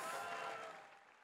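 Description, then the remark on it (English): A short burst of audience applause for two people after a shoulder-lock demonstration, dense and crackling with many hands clapping at once, fading slightly toward the end, with no voices over it. “All right, round of applause for these two.”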